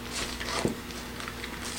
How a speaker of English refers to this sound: Metal zipper here.